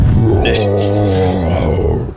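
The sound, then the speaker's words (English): A person voices a loud, drawn-out dragon roar, a single raspy, strained scream lasting about two seconds before cutting off abruptly. “it raises its bloody maw at you, O'Shea, and screams the loudest dragon scream you've heard”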